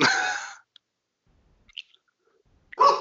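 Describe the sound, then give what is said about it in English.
Two dogs, Tommy and Nola, barking: a loud, drawn-out bark opens, then near silence with a few faint clicks before another sharp bark bursts in at the end. No one speaks. “But I have no idea who Tommy and Nola are barking at right now.”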